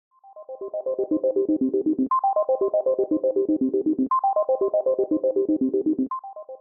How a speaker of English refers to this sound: when we come back from this short musical interlude, we will be hearing from one of my patrons